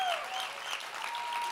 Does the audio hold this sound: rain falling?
no